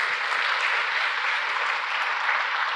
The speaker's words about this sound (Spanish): Tiene que ser el Espíritu. Dale un aplauso fuerte al Señor, se lo vas a dar.